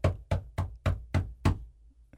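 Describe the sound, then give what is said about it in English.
A squirrel knocks on a door: six quick, evenly spaced knocks, sharp with a hollow thud to each, followed by a moment of quiet. No voices are heard. “I get out of the chair, I go look, there's a squirrel knocking on the door with this "where's my crepe" look.”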